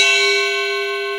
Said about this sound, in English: Allow the sound of the chime to call you to this moment, right here, right now, preparing to pause for presence, an opportunity for being rather than doing.